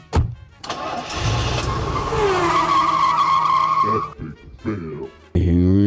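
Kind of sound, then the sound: vehicle, car skidding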